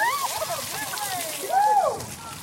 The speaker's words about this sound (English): So students can dump water on her head. Let's get your bucket.